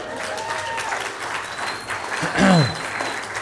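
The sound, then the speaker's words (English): A crowd of people at Sierra Bible Church clapping steadily for Pam Franklin, the church's secretary of 30 years, a dense, sustained patter of applause that swells briefly near the end with a short whoop or cheer rising above it. “And she's not here, so all your applause are on deaf ears, but she knew I was going to mention it.”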